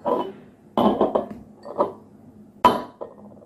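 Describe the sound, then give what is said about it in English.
Ingredients being poured into a glass, heard as a series of sharp clinks and knocks of glassware and containers with short ringing tails, spaced irregularly, with no talking. “I'm going to pour all these ingredients into the glass.”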